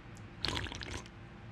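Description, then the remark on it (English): A short wet splash of a drink dumped onto the floor, a burst of splattering and dripping lasting about half a second, fairly quiet, with no one speaking. “I dumped mine all over the floor.”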